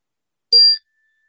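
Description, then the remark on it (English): A single bright bell chime rings out once, sharp at the strike and then fading with a thin lingering tone, heard alone against silence. “a bell chimes, and the older woman enters and speaks.”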